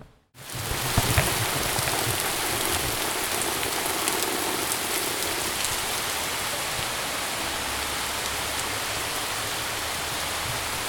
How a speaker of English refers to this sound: So the rain arrived, which is good. We haven't had a good rain in a week or so. And I came out on the back porch. The three of us were on the front porch, and it gets a good through the metal roof. So it's really nice when it rains to hear that